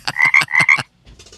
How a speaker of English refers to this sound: Ribbit.